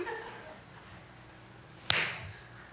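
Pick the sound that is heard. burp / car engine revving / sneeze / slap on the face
slap on the face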